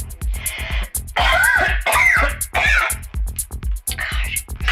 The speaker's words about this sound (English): Goddamn cigarettes. I never should have stopped smoking this emphysema cough. Probably would have healed it if I would have continued to smoke.